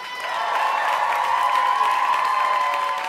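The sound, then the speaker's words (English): A crowd in LA applauds and cheers as comedian Eliza Schlesinger is introduced at a comedy show, in a steady, sustained wash of clapping with shouts and whoops mixed in, holding loud and even for the full few seconds without any talking. “Please give it up for Eliza Schlesinger!”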